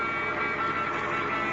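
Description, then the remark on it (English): An approaching car carrying four men: its engine and road noise hold a steady, continuous rumble and hiss, swelling slightly midway, with no voices or other sounds. “It's a car. Yeah, here they come.”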